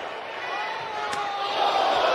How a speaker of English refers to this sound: He slapped him. Kyle O'Reilly slapped Karrion Kross.